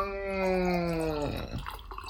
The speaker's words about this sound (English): I'm pouring more sangria. Give me your glass.